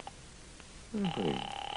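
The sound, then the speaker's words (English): A telephone rings over the line as a call is placed to the Owl Diner: a steady electronic tone that begins abruptly after a second of near silence and continues fairly loudly to the end. “I'm going to get them on the phone right now.”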